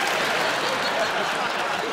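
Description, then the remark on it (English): A studio audience applauds steadily, a dense, even wash of many hands clapping at once, fairly loud, with no pauses across the short stretch. “Yes, the crowd just realizing.”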